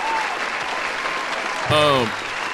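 A steady round of applause for a DJ fills the whole stretch, a dense hiss of many hands clapping, with a brief, loud, pitched whoop or cheer rising over it toward the end.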